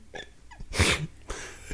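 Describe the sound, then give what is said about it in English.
A single sharp sneeze bursts out after a quick inhaling buildup, followed by a breathy rush of air or sniff as it trails off. No speech. “I agree, and I'm about to sneeze.”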